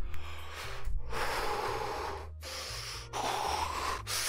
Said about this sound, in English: I'm like doing arm movements and breathing.